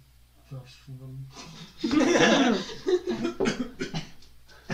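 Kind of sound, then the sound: human body sound, coughing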